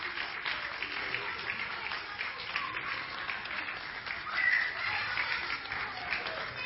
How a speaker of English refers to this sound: Come on, let's give a round of applause for the wise men.